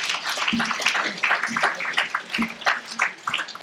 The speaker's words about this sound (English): Are you still going to come up? Yep. All right. So give them a round of applause.